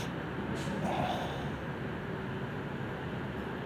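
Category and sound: human body sound, hiccups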